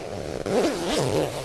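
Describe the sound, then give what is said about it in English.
A coat zipper is zipped back up in a dressing room, drawn in one continuous, scratchy pull lasting about a second, fairly loud, with a slight wavering whine through the stroke and no talking. “Let me zip back up again before this gets too scandalous for the airwaves.”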